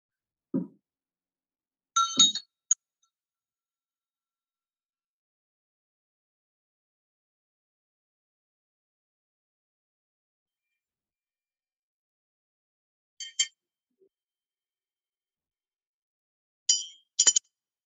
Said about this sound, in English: To make it easier to differentiate between the object versus the awareness itself, I'm going to use the bell meditation, the big mind meditation. Let's focus on the sound.